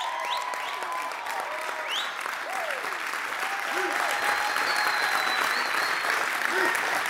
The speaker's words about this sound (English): Now, you can't keep clapping like that because I've only got 15 minutes and you can't steal my time.